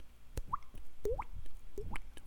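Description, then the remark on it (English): Someone makes mouth-produced water drip sounds, three wet plinks with a rising pitch, evenly spaced about half a second apart, with no talking. “Love the drip. Yeah. Drip, drip, drip, drip, drip.”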